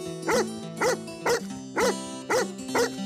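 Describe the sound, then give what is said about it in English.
An English pointer dog named Spike barks six times in a steady, evenly spaced rhythm, each bark sharp, over a low continuous tonal hum in the background. “He did, however, get an interview with an English pointer.”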